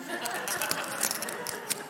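An earring clicking and tapping against a microphone: several light, sharp, irregular clicks, bright and brief, over a steady low background hum.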